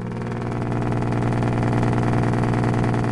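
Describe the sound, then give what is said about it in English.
A truck's jake brake (engine brake), played from YouTube, roars in a loud, steady, low-pitched blat, its rapid machine-gun pulsing running unbroken for about three seconds with no voices. “Back at the office, Alicia and I check out jake brakes on YouTube.”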